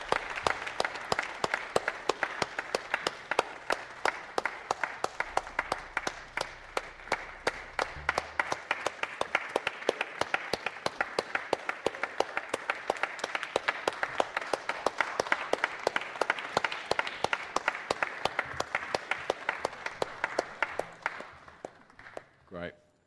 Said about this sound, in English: and the rest of us, let's give them a massive cheer to encourage them on.